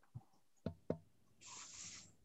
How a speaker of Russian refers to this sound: я как раз думаю, как раз человек берет глоток воды, замечательно, ответь.